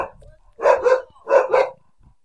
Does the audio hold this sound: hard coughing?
no